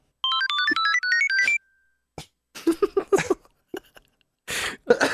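A tablet's incoming-call ringtone plays a quick, bright electronic melody of stepped tones for just over a second, then stops abruptly, followed by short bursts of voices, laughter and a throat clear.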